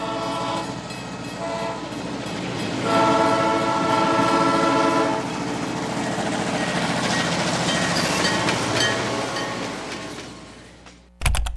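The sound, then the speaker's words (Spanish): A train sound effect: a loud, sustained horn blast with stacked harmonic tones over a rumbling, rattling rolling noise that carries on steadily before cutting off abruptly. No one speaks. “Nos subiremos por unos minutos en el tren de los patrocinadores que hacen posible este lindo programa.”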